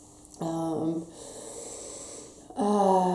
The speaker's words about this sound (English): So let's do a practice together. Let's just breathe. So just breathing first, and then we'll open up circle.